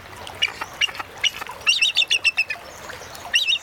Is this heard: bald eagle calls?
yes